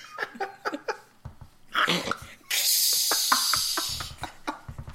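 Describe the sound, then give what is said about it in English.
A voice imitates water being turned on: a few short clicks and breathy sputters, then a loud, steady shushing hiss held for nearly two seconds before trailing off. “It's like that, except for just the sound of water turning on.”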